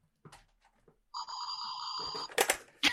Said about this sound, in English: Did somebody just phaser me? That sounded different to the keyboard. It wasn't pointed at you. It just happened. I love that. My daughter was playing with my phaser earlier, and it just happens to still be here.